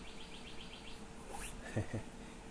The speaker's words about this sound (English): And the bird is chanting.